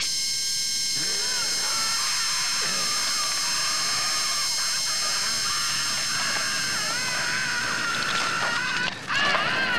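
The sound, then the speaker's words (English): A shrill, sustained high-frequency Dolby film-score tone of stacked high pitches holds steadily and loudly throughout, building toward an apex, with wavering upper layers, before briefly dropping out near the end. “particularly the high frequency Dolby sound is really, really building, and you can kind of hear that. And it's going to an apex”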